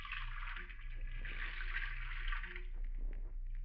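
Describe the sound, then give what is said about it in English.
Water runs steadily from a faucet at a sink into a container, a continuous rushing splash for a few seconds that eases off near the end, with a low hum beneath and no voices. “You fill it with water from the faucet.”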